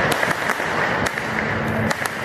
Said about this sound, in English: As more folks arrived, more fireworks were set off. At first, people simply stood in the street in front of the Justice Center, aiming fireworks straight into the air to provide their incarcerated friends with a show.